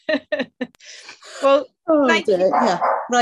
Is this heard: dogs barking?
yes